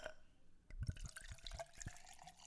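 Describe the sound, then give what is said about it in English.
Gin poured into a glass over ice, with a few soft clinks and gurgles, starting after a brief quiet moment and settling into a light trickle. “Yeah, here's the gin.”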